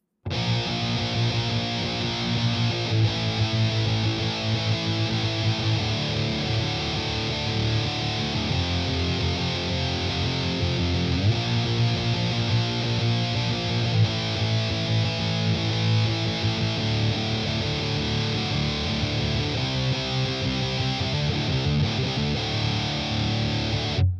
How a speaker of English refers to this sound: running the Metal Zone through the return of an amp's effects loop, effectively using it as a preamp rather than an out-front distortion box